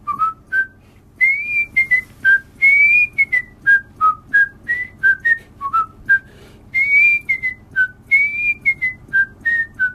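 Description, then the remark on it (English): A person whistles the theme tune of The Andy Griffith Show, clear, with a bouncy melody of short and sustained notes repeating over ten seconds and no talking. “I wonder if you could whistle a little bit of a song that a popular song that everyone would recognize”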